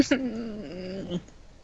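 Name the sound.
cat vocalizing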